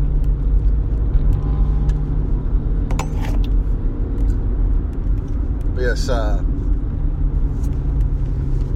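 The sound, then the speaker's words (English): An old, beat-up Mazda car with racing modifications rumbles loudly and steadily with a deep, throaty idle like a hot rod, filling the whole stretch while a voice briefly speaks over it. “It's an old Mazda car. It looks like a freaking tin can. Somebody did something to it to make it sound like a hot rod.”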